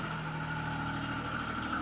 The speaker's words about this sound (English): We'll let this truck go past here for just a second. It's a very active tunnel way down here.